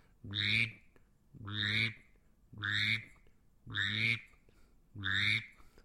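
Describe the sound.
A male mallard call blown on a duck-call whistle: five raspy, nasal quacks repeated at a steady, even pace, each about half a second long, with no talking. The caller's right hand is pressed tight against the whistle's megaphone and pulled off to shape each note.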